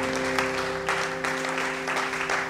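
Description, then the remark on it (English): A church audience claps for the Lord during a sermon, steadily for a couple of seconds, a dense, even patter of many hands with no voices, over a faint sustained low hum. “Give the Lord a clap in the house today.”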